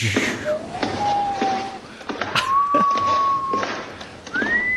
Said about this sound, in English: The door is in fact slightly ajar, and I push and open it more.